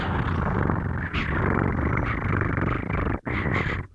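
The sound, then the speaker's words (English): A person imitates a cat's purr with a steady, throaty rolled-R rumble, fairly loud, lasting several seconds with one brief break for breath near the end. “I learned how to purr. How do you purr? How does one purr? Oh. You just roll your R's.”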